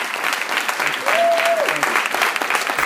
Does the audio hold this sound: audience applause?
yes